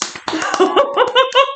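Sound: hand claps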